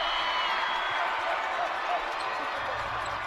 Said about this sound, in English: Oh, man, can you hear it? Can you feel it, folks? That is our student sections at full throat. They have unleashed the tiger.